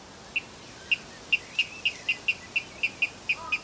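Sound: water rail call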